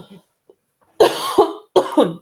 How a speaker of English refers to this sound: I'm sorry, I'm going to cough.